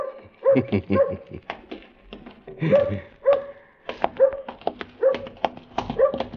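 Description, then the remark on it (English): A dog barks in a quick run of short, sharp yips, mixed with high whimpering whines. It sounds fairly loud, with the barks coming every half second or so. “Hey, dog. You got a friend for me?”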